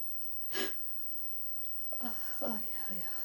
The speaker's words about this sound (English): I have recording him coughing. And I wrote that coughing is corona coughing, because he died of corona